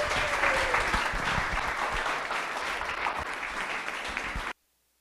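An audience applauds a discussion panel at the end of the event, with dense, overlapping clapping at a fairly loud, even level for about four and a half seconds, then it cuts off abruptly into silence.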